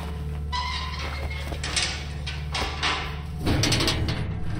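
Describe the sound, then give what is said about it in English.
A well-oiled hatch creaks open with a short, strained groan, followed by scraping knocks and shifting thuds over a steady low rumble, moderately loud. “But the creak of a well-oiled hatch told me we were at the end.”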